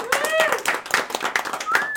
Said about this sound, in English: Hand of applause to you.